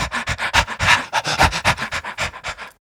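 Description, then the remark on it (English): Rhythmic, breathy a cappella backing vocals: a quick, steady run of sharp, panting exhalations, close and fairly loud, with no instruments or singing words, ending abruptly after a few seconds. “And like some a cappella at the beginning with these like breathy backing vocals. This rhythmic breathing.”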